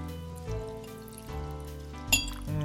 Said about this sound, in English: a very fine glass with those sort of like fancy granite stones that don't dilute the drink. They just chill it. Nice. And so very for nice. The benefit of the listener, I'm just going to pour it right here so that you get the full impression.